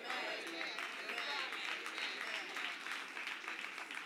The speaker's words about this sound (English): 3 hand claps. Maybe 5 in church again. 6, 7, 8, 9. Come on, somebody encourage me.